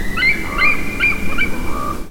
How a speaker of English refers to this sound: much like how they tend to use hawk sounds for eagles, probably because eagle sounds aren't nearly as appealing.